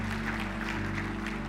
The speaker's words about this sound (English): Can I get a clap for that? Give it up for my wife and my mom.